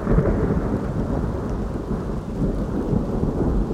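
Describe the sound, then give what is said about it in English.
A sudden thunderstorm at night with steady, heavy rain and a deep, continuous rumble of thunder rolling underneath, loud throughout with no voices. “The storm seemed to have manifested itself from out of nowhere, and it should have been an indication or some terrible omen of how my night was going to go.”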